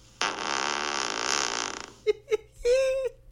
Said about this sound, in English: It's not funny anymore. We're alienating people with your fart joke.